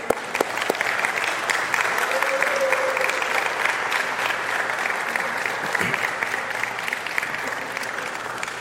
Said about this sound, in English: if you're a mother, would you stand? We're going to clap for you and also hand you a flower.